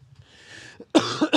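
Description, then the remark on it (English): A soft breathy exhale, then a loud cough burst from a person who is sick, with two or three harsh rapid follow-up hacks, no talking. “Oh, this cough. I cannot shake it.”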